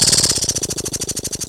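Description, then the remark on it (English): A voice beatboxes an imitation of machine-gun fire with a fast, steady rattle of hissy, chopping bursts, around a dozen per second, loud and uninterrupted, coming across almost like helicopter blades. “Oh, I'm trying to make gun sounds. It sounded more like a helicopter.”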